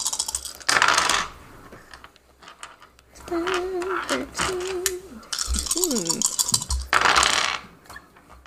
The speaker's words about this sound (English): Did you roll the d8 right there?